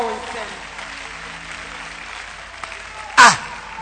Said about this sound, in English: Therefore, if anyone is in Christ, he's a new creature. The old has gone, the new has come. Why don't you clap your hands for that?